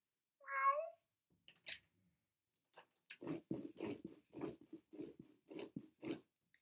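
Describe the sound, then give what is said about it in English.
A single short cat meow rises and falls near the start, followed after a brief pause by a person talking in a run of quick syllables. “Meow! You want to come inside, kitty?”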